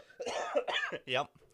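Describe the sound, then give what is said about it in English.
A few short, rough coughs in quick succession, moderately loud, the last one throatier and more voiced, with a bit of throat noise between them. “yep if I ever shake this little cough I got.”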